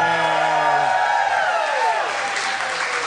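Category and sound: crowd, audience applause and cheering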